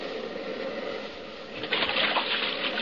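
A boat pushes through shallow water toward an island beach, a steady rush of splashing that swells louder partway through as the hull surges ashore. No voices.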